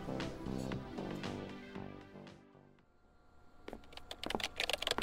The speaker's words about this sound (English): I have to finish typing these notes for Weber.